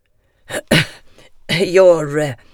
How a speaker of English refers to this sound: He pauses. The ticking of the clock on the mantelpiece is very loud. Then he coughs.